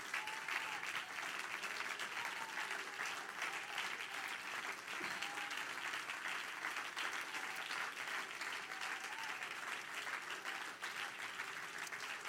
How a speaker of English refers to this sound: Why don't all of you get up and clap your hands and say, I believe that, Pastor.